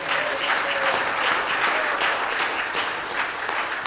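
A crowd breaks into steady, dense applause, many hands clapping together in a continuous rattling wash that holds at an even loudness for several seconds without any talking.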